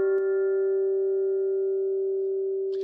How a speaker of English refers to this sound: Which means, because we're doing a Chinese proverb, go and get your gong out.